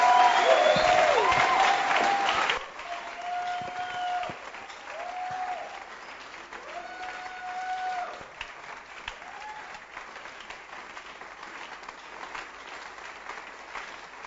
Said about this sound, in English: Come on, give it up. Give up some love. You know, listen. Oh, you can clap properly.